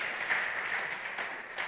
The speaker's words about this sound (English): What a great job. Exactly. Round of applause.